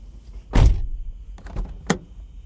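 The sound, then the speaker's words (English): A key is slid under a closed office door at check-out: one loud scrape-and-thud, then a few lighter clicks and a sharp tap, with no voices. “I can just slide the key under the door.”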